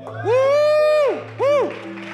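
Audience cheering after being prompted by the organizer: a long, loud whooping cry rises and falls, then a shorter whoop follows, both over a low steady hum.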